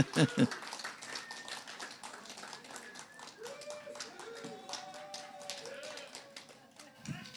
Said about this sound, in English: Keep your applause going.